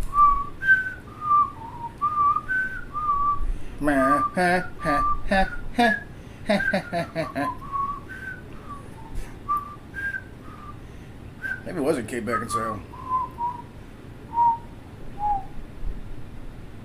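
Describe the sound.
Someone whistles a wandering tune in clear, sustained notes, pausing twice as a man speaks briefly over it, then resuming the melody on their own.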